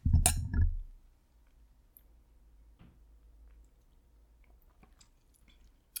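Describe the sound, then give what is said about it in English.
A loud clink of glasses in a toast opens, followed by near silence with faint small sips of a passion fruit and vanilla vodka cocktail and soft mouth sounds. “Oh, that's easy to drink.”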